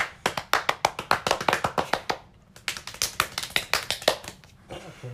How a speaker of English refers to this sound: Okay, do I get a round of applause for this? Okay. Because I know a lot of people are waiting.